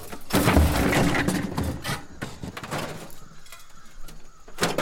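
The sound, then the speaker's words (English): Loose junk being pushed aside, a busy clatter and scrape of knocking objects, loud in the first two seconds, then scattered lighter knocks and rattles trailing off. “Here, let me move some of this junk out of the way.”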